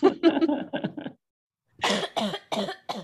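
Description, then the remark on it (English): A fit of coughing: a quick cluster of rough coughs, a short pause, then a second burst of several harsh, breathy coughs in a steady rhythm. “if you have any questions, but stop coughing first”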